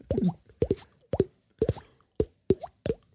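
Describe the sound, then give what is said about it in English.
A voice imitates a water drop with a series of hollow mouth plops, about six short popping bursts spaced roughly half a second apart, each with a quick rising pitch and moderate loudness. “It sounds just like a water drop, right?”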